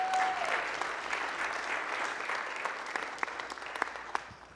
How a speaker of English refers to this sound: We're proud of all of them. Can we give them another hand clap, please?